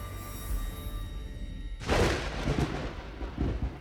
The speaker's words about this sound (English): A storm had knocked out the power to the hotel, and as it raged, the building shook with its fury. The wind was bouncing off the mountains, sweeping rain